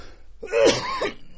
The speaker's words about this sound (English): Excuse me. I was coughing trying to get this out.